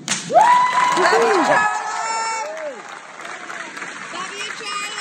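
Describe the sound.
A crowd claps and cheers steadily, with several voices shouting out loudly over the applause, the shouts rising in pitch at the start before the clapping continues at a slightly lower level.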